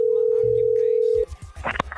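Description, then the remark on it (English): A steady electronic ringback tone hums over a phone line on an outgoing call for just over a second, then cuts off abruptly into muffled clatter and line noise as the call connects. “Let's try to make this phone call.”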